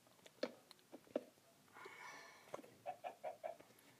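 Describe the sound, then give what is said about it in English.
A chicken clucks in short, scattered bursts, ending with a quick run of four evenly spaced clucks, with a soft rustling noise in the middle; moderately loud, no talking. “Get out of here, chicken.”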